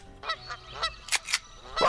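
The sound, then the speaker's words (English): A goose honks repeatedly, about half a dozen short, nasal calls in a quick, uneven series, loud, with the last honk the strongest. “I really thought you were going to have Gooseys for that.”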